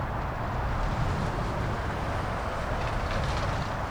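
Heavy traffic on Highway 101 in Agoura Hills, on the border between Los Angeles and Ventura counties, where 300,000 cars pass daily, forms a steady, dense roar, a continuous low rumble with a broad hiss on top that never lets up across the few seconds. No one speaks.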